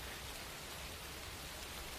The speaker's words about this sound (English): Haruka's kind of just standing out in the rain